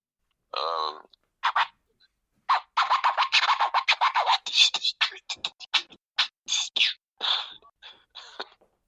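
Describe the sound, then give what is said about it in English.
A voice beatboxes through a phone line: rapid, crisp clicks, hissing hi-hat bursts and puffed kick-like pops in a tight rhythmic pattern, with short pauses between phrases, bright and thin-sounding. “Do you still beatbox now? Yeah. Can you do us a bit down the phone?”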